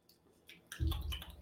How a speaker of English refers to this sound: But here's the first sip of the Charm Bomb. Wow. That's good. That's good dark beer.